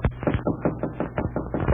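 Rapid, steady knocking on a hotel room door in a tungsten mining town: about nine or ten firm, hollow raps in quick, even succession, fairly loud, with no voices.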